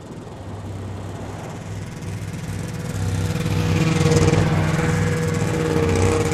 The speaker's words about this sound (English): The two vehicles rip across the hard, flat ice, bolstered by the added horsepower. They follow the still visible dog tracks in the snow. Cut to the sun, sliding across the horizon, signaling midday. The snowmobiles whoosh past.